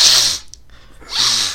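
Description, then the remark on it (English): A person in a toilet cubicle makes two sharp, loud snorting sniffs separated by a short pause, pretending to sniff drugs up the nose; the sniffs are harsh and breathy. “pretending that I was, like, sniffing drugs so they didn't think that I was pissing.”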